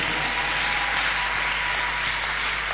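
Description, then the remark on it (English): An audience claps steadily, a dense, continuous wash of many hands with no pauses and an even, bright texture throughout. “As you are clapping, may somebody also clap for you.”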